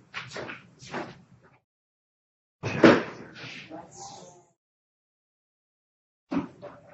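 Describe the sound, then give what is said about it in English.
A door swings shut with a solid thud, followed by a brief rattle of the latch, with softer handling and shuffling noises before and after. “I can close the door.”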